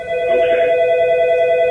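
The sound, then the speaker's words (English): A telephone rings with a steady electronic trill, fairly loud, sustained through one continuous ring with no voices present, at an outreach coordination center on Fairmont Avenue in Philadelphia during a freezing Code Blue weekend. “The ringing has been a constant at Project Homes Outreach Coordination Center on Fairmont Avenue throughout this frigid Code Blue mandated weekend.”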